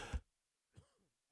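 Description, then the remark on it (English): A sharp, forceful cough bursts out, followed after a short pause by a rougher throat-clearing rasp, both fairly loud with silence between them. “Because you're still coughing and hacking, man.”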